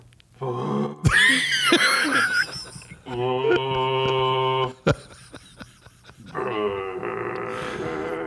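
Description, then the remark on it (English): A voice imitates a didgeridoo drone by buzzing the lips, producing several low, loud, buzzy blasts with strong harmonics, separated by short pauses and sharp breaths. “So you got to like blow like... like that.”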